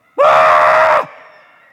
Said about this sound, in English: Everybody let out a big old scream with me.